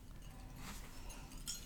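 glasses clinking

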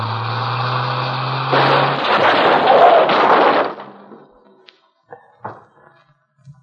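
car crash

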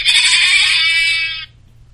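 goat bleating

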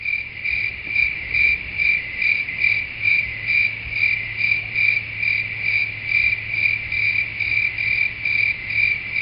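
crickets chirping

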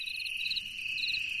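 crickets chirping

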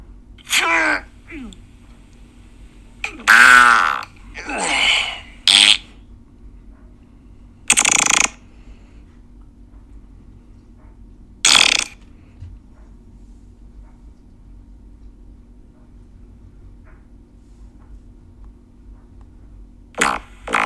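fart sound effects

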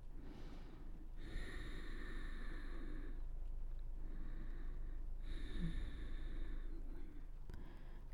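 deep slow breathing

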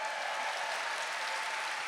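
audience clapping

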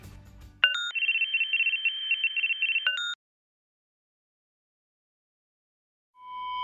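phone call ringing tone

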